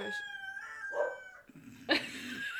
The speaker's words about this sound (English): So I have... I thought I heard a dog. I have some barking dogs. That's what I have.